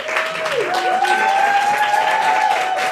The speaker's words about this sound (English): Everyone give a warm round of applause to our Yawpcast teacher